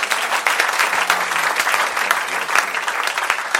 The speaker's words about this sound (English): A round of applause for you.